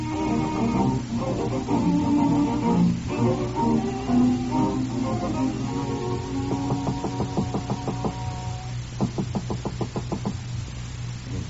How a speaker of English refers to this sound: Incidentally, whenever you hear that particular rapping on that particular door, ladies and gentlemen, that means Mr. Martin is calling on Miss Novak.